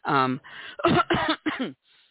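cough

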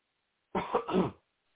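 man coughing

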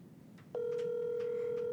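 phone line ringing

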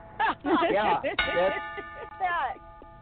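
bell ringing

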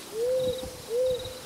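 owl hooting

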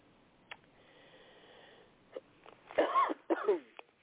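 coughing

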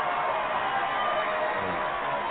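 applause sound bite

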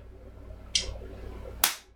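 a slap

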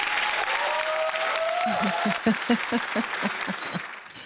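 audience applause

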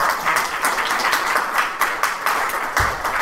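audience applause

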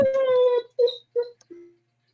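puppy whimpering

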